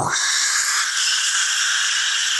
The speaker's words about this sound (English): Was that the sound of a jet starting?